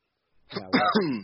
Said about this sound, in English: I clear my throat. I think I got it.